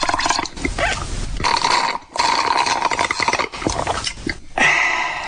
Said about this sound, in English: That's one of my favorite sounds that I recorded. Drinking from a straw and making a little noise.